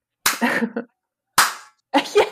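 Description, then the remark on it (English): A slow clap: three sharp, loud hand claps spaced unevenly about a second apart, each with a brief ringing tail, and no talking. “The slow clap.”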